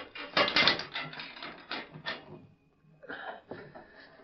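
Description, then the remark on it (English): A heavy metal lock on a jail cell door clanks and ratchets as a key is turned, a burst of rattling mechanical clicks followed by a pause and a few softer metallic clicks, fairly loud. “Just as soon as I lock you in this cell and pick me up a horse.”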